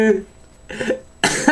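A couple of abrupt coughs, the first short and the last a louder, harsher burst with a breathy rasp, with a brief quiet gap between them.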